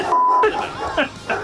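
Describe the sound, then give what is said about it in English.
A single short, steady mid-pitched censor beep cuts in, flat and electronic, then gives way to people talking. “So we're beeping. We're beeping all that. All that's beep. It's one long beep.”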